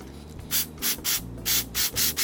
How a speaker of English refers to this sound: Wear eye and ear protection, it's gonna make a lot of noise. And I'm gonna spray on the brushes, and I think this is called the commutator.